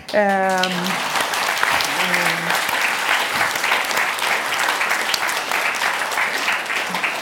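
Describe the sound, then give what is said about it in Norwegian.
Sustained applause from a sizeable crowd, dense steady clapping throughout, with a brief voice or cheer near the start before the clapping carries on evenly. “Som så utrolig vakkert at jeg fortjener nesten en applaus.”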